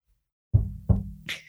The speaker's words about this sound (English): This is when there was a knock on the door.